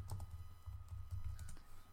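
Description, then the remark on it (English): Rapid keyboard typing, a steady run of light clicky keystrokes over about two seconds, as someone types a web search for spotted quolls and accidentally searches for a quail; no voices. “I think I accidentally searched for a quail.”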